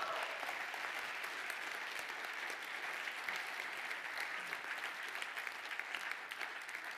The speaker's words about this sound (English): Would you give Jesus a round of applause?